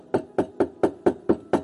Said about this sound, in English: He says, behold, I'm standing at the door of your heart and I'm knocking. Can you hear that?